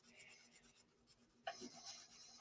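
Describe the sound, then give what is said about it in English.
Quick, steady back-and-forth scratching of a pencil coloring in the body of a drawn black or gray cat on paper, soft, with the strokes growing a little firmer and denser partway through. No one speaks. “When there's a black or gray cat, I always color it in with pencil.”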